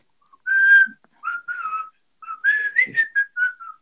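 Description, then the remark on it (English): A person whistles a bright, bouncy melody in a few short phrases with brief pauses between them, clear, with no talking. “just there whistling along”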